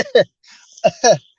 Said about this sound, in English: It's been some time, so I'm still trying to milk it. Like, I walk around work. I'm like, I give the little cough.